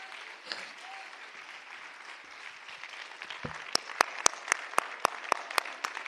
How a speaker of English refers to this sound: Let's all clap our hands to God together.